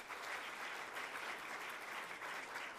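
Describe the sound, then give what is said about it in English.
A church audience applauds a woman who has come forward to be baptized and join the church, a dense, even wash of many hands clapping at full strength for the whole stretch, with no voices standing out. “And I'd give her a hand.”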